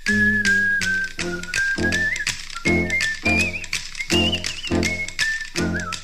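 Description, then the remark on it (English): The Harlem Globetrotters basketball team's upbeat theme song plays, a bright whistled melody gliding over steady, punchy rhythmic beats and a bouncing bass line, with no voices. “I figured I'd get the theme song over with so you can have it running in your mental background as you hear the glorious voice of Hammer Harrison.”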